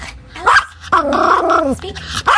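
A dog lets out a short bark, then a drawn-out growling vocalization that bends downward, followed by another brief bark at the end, all fairly loud and with no talking.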